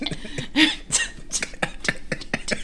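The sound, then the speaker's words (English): A person fakes a fit of coughing, a rapid run of harsh, hacking bursts with brief gasps between them, as if trying to cough up a swallowed pill. “He took the red pill, but he's like, damn, I'm going to unswallow this pill. I'm just going to cough it back up.”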